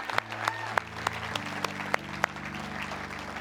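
A church audience claps together in a steady, sustained wave of applause, with sharper individual claps popping out roughly every third of a second over a low, humming musical backdrop.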